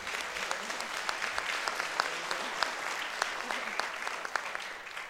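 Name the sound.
audience applause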